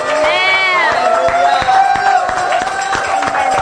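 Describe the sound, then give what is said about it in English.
A church audience stands and gives the Lord a standing ovation during worship. Dense, loud clapping mixed with whooping voices and cheers, with a sustained tone ringing beneath the ovation throughout. “So if you can, stand up and let's give the Lord a standing ovation.”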